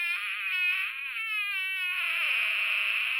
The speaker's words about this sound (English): it gives you a little sound clip of every different kind of fart that it talks about in here